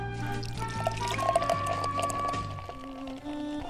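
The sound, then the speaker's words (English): Beer glugs from a can into a glass in one continuous pour straight from overhead, the pitch rising steadily as the glass fills, with fizzy foam crackling near the end. “That may be the best pouring sounds you have yet captured.”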